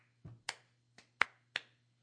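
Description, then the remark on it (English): A few slow, unenthusiastic hand claps, about four or five sharp bright smacks spaced unevenly over two seconds, with a faint low hum underneath and no talking. “Insert disinterested clap here.”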